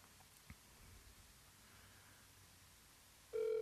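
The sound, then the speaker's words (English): Near-silent hiss gives way to a sudden, steady electronic phone ring tone at the very end, loud, as a call rings out on speakerphone. “Just answer the phone.”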